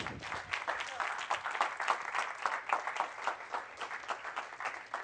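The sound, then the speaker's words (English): An audience claps their hands for God in a sustained burst of applause, many overlapping claps forming a dense, steady patter with slight swells in loudness and no voices standing out. “Give God a hand clap in here.”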